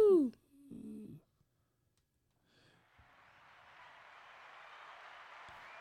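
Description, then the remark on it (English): A short whooping vocal cry and a brief murmur, then a pause before a steady wash of applause rises gradually and keeps going at moderate volume. “Applause. Hope y'all heard that.”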